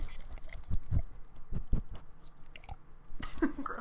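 A dog gnaws and bites on a ball, with irregular wet chomping and squeaky crunching bursts, loud, no one speaking.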